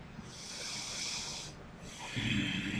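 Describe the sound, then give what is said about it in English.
A man imitates a growl with a breathy, hissing rasp in two stretches, the second one rougher and deeper, without much menace. No words are spoken. “He makes a growling sound from the man, which doesn't sound that intimidating. It's just a man growling.”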